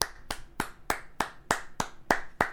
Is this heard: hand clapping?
yes